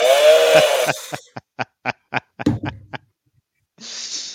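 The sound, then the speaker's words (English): A toy chainsaw sound effect revs up with a buzzy whine, sputters through a quick, even string of short pulses, then gives one last brief burst, loud with no talking. “And I'm going to laugh about that little toy chainsaw.”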